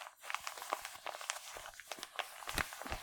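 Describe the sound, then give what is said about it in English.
Dense crinkling and rustling of paper inside a bag as it is handled, with irregular crackles and soft crunches spread throughout, fairly quiet and with no talking. “It feels like there's paper inside.”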